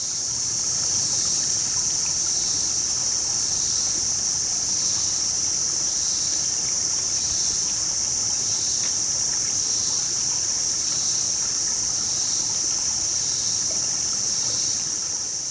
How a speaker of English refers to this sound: You've been listening to Cicadas Over the Lost River at the Wesley Chapel Gulf, Orange County, Indiana.